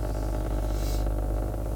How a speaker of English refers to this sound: I'm in my car. A little purr.